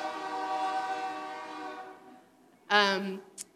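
A train horn blares in a long, sustained chord that gradually fades as the train moves off, followed by a brief, louder burst of sound near the end.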